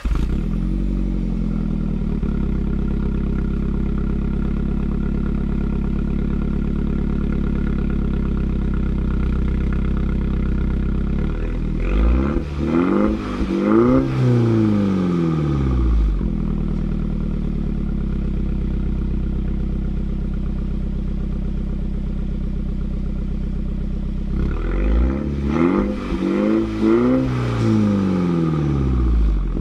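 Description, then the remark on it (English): A car engine starts and idles steadily in normal mode with the sport button off, then revs twice in short bursts, its pitch swelling up and falling back each time, fairly loud with no talking. “But the first thing you're going to hear is the car starting up and revving slightly without the sport sport button on, or, you know, in normal mode.”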